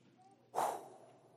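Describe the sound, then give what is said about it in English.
A single forceful breath pushed out sharply, a brief breathy whoosh that starts abruptly and trails off over about half a second, fairly loud against a quiet background. “Just with a breath.”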